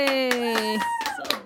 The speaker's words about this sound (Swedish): Jag tycker att vi kan göra, ge av en liten applåd här nu när vi är så många i studion. Oj, vänta. Okej, jag ska se om jag kan applådera.